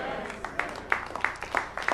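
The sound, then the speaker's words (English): A crowd claps hands in a steady, even rhythm, about three claps per second, moderately loud and reverberant, over a murmur of voices. “Ooh, the hand claps.”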